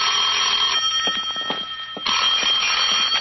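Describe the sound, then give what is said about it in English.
A telephone bell rings at 10 in the morning with a call from Hartford, in two bright, metallic trilling bursts with a short quieter gap between them. The ringing is loud and steady, with no voices. “At 10, my phone rang.”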